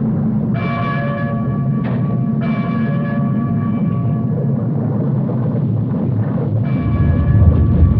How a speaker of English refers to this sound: The weather suddenly shifts, dark clouds gather in a violent storm, and an underwater earthquake rocks the ruins of the old city. Violent tremors cause the bell of the cathedral to ring.